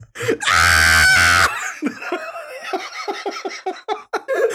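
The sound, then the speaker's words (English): A person imitates a video game character's loud, shrill cartoon-style scream lasting about a second, then breaks into several seconds of breathy, rhythmic laughter in short bursts. “I need to like verify if that's how he screams.”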